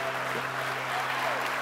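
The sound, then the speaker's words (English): A church audience applauding steadily, a dense wash of many hands clapping at once without pause, with faint voices mixed into the background. “Come on, church. Keep clapping.”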